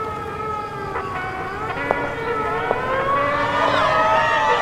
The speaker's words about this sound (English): At dawn, a prearranged signal consisting of a bugle call and a gunboat siren shrilled out, and the Green Gang men set to work murdering every communist and union member they could lay hands on.